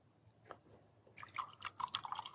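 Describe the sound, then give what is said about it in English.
Liquid is poured into a cup, a quiet gurgling, bubbly trickle that starts softly and grows busier and more splashy over a couple of seconds, with no talking. “And then he poured,”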